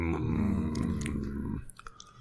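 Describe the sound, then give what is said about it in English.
A low, grumpy growling voice rumbles, then gives way to a few short, crisp crunching bites of a slightly inferior biscuit labelled digestive, eaten while frowning. “I'll be frowning as I crunch through your through your biscuit layer.”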